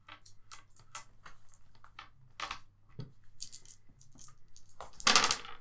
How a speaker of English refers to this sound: Roll for the attack using 6 base dice. Damage 2.